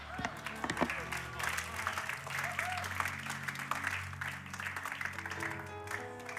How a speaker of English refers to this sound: That was a very, very pitiful golf clap, even if I was on the golf course.